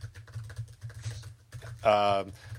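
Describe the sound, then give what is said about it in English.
Rapid, steady clicking of fingers typing on a computer keyboard, moderately quiet, briefly interrupted near the end by a louder ringing bell tone before the tapping resumes. “Wait, here, listen, here's my typing.”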